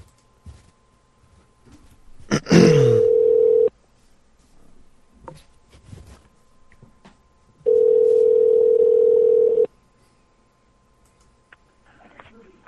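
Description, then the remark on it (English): Two long, steady electronic ring tones of an outgoing phone call, separated by a pause of several seconds, with faint clicks and handling noise around them and no talking. “It's call. Ringing.”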